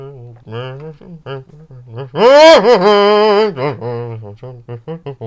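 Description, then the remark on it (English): A voice imitates a character locked in an old coat closet singing a muffled drinking song, a mumbled, tuneful warble echoing through the walls that suddenly swells louder and wavers in pitch midway before sinking back to a low, smothered murmur. “You can actually hear him singing a drinking song. Mm-hmm. It kind of gets loud every so often, but it's mostly muffled, so it's like...”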